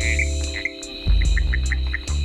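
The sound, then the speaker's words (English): A series of short, high-pitched clicking calls from a lemur leaf frog, repeated at irregular intervals over a steady hum of night insects and low background rumble. “The call of the lemur leaf frog is a short, high-pitched click.”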